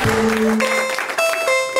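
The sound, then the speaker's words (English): At a stand-up comedy show at the UCB, audience applause for the host rushes steadily beneath loud music with sustained, held tones, the clapping forming a dense, hissing wash that never lets up across the short stretch. “Please clap yourself and please put your hands together for your host,”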